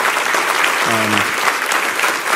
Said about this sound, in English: I don't think they can all hear you, but I want you to give just a huge round of applause for all the hard workers that make this thing go every week, week after week, all the volunteers in children's ministry.